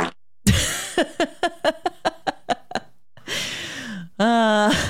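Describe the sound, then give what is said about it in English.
A burst of comic fart noises, likely voiced by a person: a quick string of about ten short sputtering pops, then a longer hissing blast sliding down in pitch and a final buzzing squeal. “Fart noise is always a classic.”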